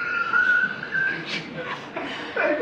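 A person whistles a thin, wavering melody close to the microphone, the notes sliding up and down over a few seconds against a light background hiss.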